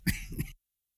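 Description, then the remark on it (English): A brief burst of coughing and throat clearing, two rough hacks in quick succession lasting about half a second, then silence. “Excuse me while I cough.”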